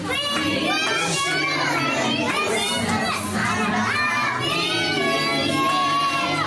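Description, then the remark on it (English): A group of children loudly shout-singing together at a school nativity, two of them outdoing each other, voices strained and overlapping, sustained and energetic throughout with a crowded, echoey feel. “It's not as good as obviously being there, but these two kids were outdoing each other, and in the end, they were just shouting it.”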